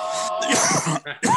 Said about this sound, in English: Where's your mask? Hello. I'm coughing. Watch out.